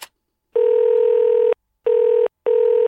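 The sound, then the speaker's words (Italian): A steady electronic telephone call tone sounds three times before an answering machine picks up: one long beep of about a second, then two shorter ones in quick succession, clear with no voices. “Risponde la mia segreteria telefonica, non ci sono, non ascolto i messaggi, richiamate più tardi.”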